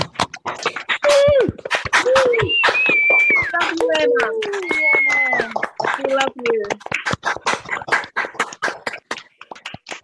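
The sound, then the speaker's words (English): A group on a call, mics switched on, claps steadily for about ten seconds in tribute to a young woman who has died. A dense patter of overlapping claps mixes with high, sliding whoops and cheering voices that rise and fall over the applause. “Clap, everyone.”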